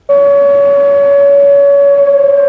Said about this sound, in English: The tsunami sirens in Port Alberni screeched into action in the small hours of Tuesday morning. People here know what the sound means, and most took the warning seriously.